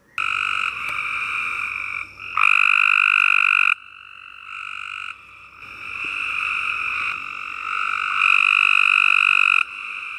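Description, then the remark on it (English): A Cope's gray tree frog calling in loud, harsh buzzing trills, several long bursts repeating with short pauses between, no voices present. “I'm going to play the the lovely Cope's gray tree frog and how annoying he sounds.”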